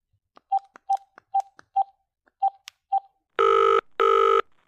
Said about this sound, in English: Then, he took out his phone and dialed